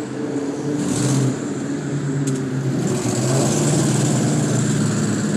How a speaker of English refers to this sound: Traffic everywhere, Broad Street, man.